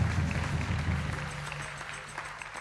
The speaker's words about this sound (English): Well, can we celebrate God this morning? Say He is worthy. Can we give Him a clap of praise?